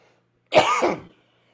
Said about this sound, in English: She coughed and said, excuse me.